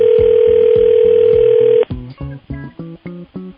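A steady, mid-pitched telephone dial tone hums loudly for nearly two seconds over a rhythmic pulsing beat as the Animal Radio hosts call back someone who left a message, then cuts off abruptly, leaving the short repeating pulses to continue alone.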